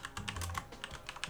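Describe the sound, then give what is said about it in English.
Rapid clicking keystrokes from a mechanical keyboard, a quick uneven burst of sharp taps with no voices. “Sorry, I got this mechanical keyboard.”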